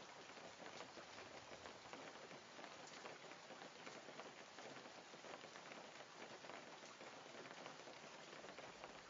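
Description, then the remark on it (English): Steady rain picking up at night in the dark, pattering on a surface, a dense, even hiss of countless drops with faint irregular taps, continuous throughout with no voices. “Now I'm in a really dark place, and the rain's picking up.”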